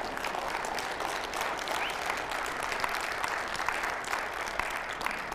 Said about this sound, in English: See, I might have tricked you a little bit on that one, because that hand clap signified that you're ready to go to work.